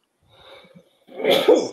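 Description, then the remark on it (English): A single sneeze: a soft breathy intake builds over about a second, then bursts into a loud, sharp, noisy expulsion that cuts off abruptly. No one speaks. “Bless you.”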